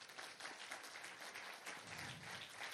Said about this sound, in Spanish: Démosle un aplauso a Cristo.